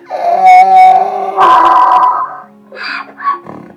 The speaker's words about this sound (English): When that was done, at a signal, they began their music all together. The donkey brayed.